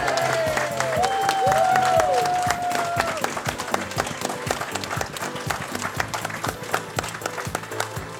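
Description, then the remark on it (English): An audience bursts into sustained applause in memory of Nicholas Parsons, dense clapping filling the whole stretch, with a few whistles and cheers rising over it early on before the clapping carries on steadily. “And I do think we should give a special round of applause to the memory of the wonderful Nicholas Parsons.”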